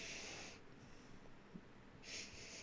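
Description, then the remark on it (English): Two breathy sniffs of a beer brewed with Brazilian pink guava, separated by a short quiet gap with faint low background rumble and no talking. “First off, take a big smell of it.”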